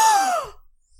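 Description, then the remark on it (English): A single surprised gasp at hearing the TV show Lost named as a favorite, breathy and voiced, sliding downward in pitch for about half a second before falling silent. No talking accompanies it. “The reason I gasped is not a lot of people like Lost.”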